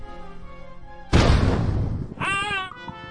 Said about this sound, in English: It's times like these that my new laser cannon comes in very handy. Don't underestimate a really well-placed shot.